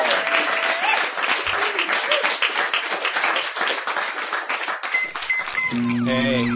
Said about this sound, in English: ladies and gentlemen, one more round of applause.